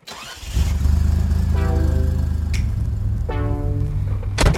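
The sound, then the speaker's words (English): A car engine cranks and catches, then settles into a deep, steady idle, with two brief revs rising above the rumble. It is fairly loud, and no one speaks. “Every single time I look at this car, open the door, start it up, I'm giddy inside.”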